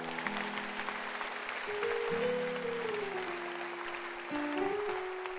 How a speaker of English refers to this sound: If today is your first time, stand to your feet. Welcome. The rest of you, clap for them.